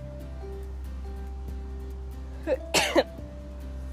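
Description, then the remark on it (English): A single sneeze, a short intake followed by a sharp explosive burst, breaking an otherwise quiet stretch with a steady low hum underneath and no talking. “Sorry, I had to sneeze for a second.”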